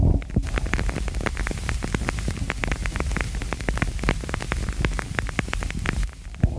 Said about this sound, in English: I've got my candle crackling, made by Candles by Jay. And no, this is not by me, because I get asked so many times. But it's instead made by Jalen McDaniel. Let me see if you can hear the crackling.